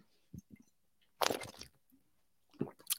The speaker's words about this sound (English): So I just need to take a sip of water.